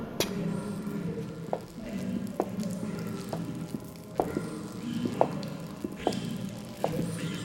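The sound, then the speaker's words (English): Sharp crackling snaps of electrical sparks mixed with irregular drips of water, spaced a second or so apart over a low, steady rumble, moderately loud. “Sparks and dripping water. Maybe a pipe.”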